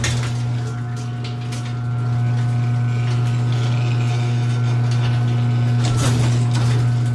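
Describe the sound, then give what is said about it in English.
A garage door rumbles shut over a steady motor hum with faint rattling, then hits the bottom with a short, solid thud near the end. Mechanical, with no voices. “Here is the garage door. Listen, because you can hear it hitting the point.”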